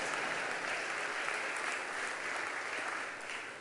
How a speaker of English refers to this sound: Do you know, last Friday I ran 22 Ks? I never thought it was possible. Yeah, come on, give me a round of applause.